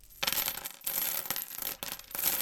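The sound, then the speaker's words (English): About $10 worth of loose coins pours out in three bright, jangling bursts separated by short pauses, loud, with no voices. “How much coins is that?”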